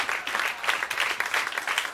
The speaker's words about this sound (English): Hand claps, everyone. Hand claps. Thank you very much.